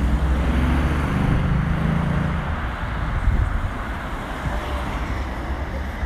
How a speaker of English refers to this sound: Oh, so many cars here today.